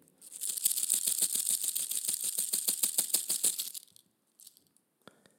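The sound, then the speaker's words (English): A rattlesnake rattle shaken in a steady, rapid dry buzz of clicks for about three and a half seconds, then a few faint scattered ticks before it falls quiet. “But because I don't like to waste anything, we skinned the snake and took the rattle, and I cooked it up on the fire with some Johnny salt, and we ate that rattlesnake.”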